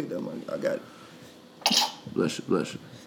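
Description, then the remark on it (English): A single sharp sneeze bursts out, a brief hissy blast, followed by a couple of short voiced sounds; quieter talking murmurs beforehand. “Bless you.”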